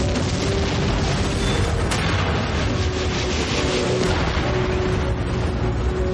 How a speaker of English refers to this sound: Whoa, he shot a gas main, it ignited, and then it blew up the helicopter. Totally awesome. And a pretty cool effect, too.